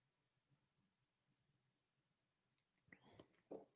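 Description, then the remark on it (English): Someone gulps from a super cold glass of water: a quiet pause, then a short run of wet swallowing sounds and a faint clink near the end. “Sorry, I'm just looking at this super cold glass of water that I got ahead of me, and I just really want to take a sip of it and then get into the comment section here.”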